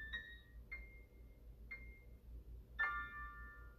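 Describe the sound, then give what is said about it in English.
Four separate notes from an online piano played with a computer keyboard, played slowly and unevenly, each striking sharply then ringing out, the last one fuller and longer, over a low steady background hum. “It's hard to play with a keyboard, but I know you're hearing that at least.”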